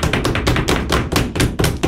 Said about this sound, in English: Order. None of that desk thumping.